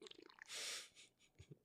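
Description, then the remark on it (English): A loud, airy breath rushes right into the microphone for a moment, a heavy exhale set among quieter breathy shuffles and faint murmuring sounds. “Well, you're the one ruining it now with your breathing.”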